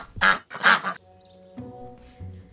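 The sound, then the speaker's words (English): A duck quacks twice in quick succession, loud, the raspy calls followed by a soft sustained tonal hum with no talking, in the audio drama The Duck Did It. “That was The Duck Did It by Rachel Feeney Williams”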